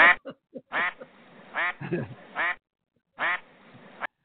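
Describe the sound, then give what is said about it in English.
A quacking duck sound effect: four short, nasal, raspy quacks, the last one after a brief pause, with a few faint clicks and rustles at the start. “Where's that quacking duck? Do you still have it?”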